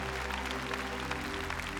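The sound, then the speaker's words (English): A crowd at a gathering in Sydney, Australia, claps for the Lord and the Holy Spirit, a dense, even wash of many hands that holds the same level throughout, with a low steady hum beneath it and no one speaking. “Come on, give the Lord a mighty hand for the Holy Spirit.”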